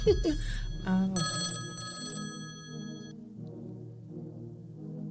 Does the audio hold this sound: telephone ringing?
yes